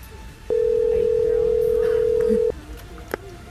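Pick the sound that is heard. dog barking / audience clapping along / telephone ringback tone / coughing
telephone ringback tone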